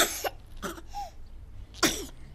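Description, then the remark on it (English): A voice acts out a baby's sneeze in three loud, breathy bursts: two quick ones close together, a short pause with a faint squeak, then a final forceful burst. “sneezed Baby.”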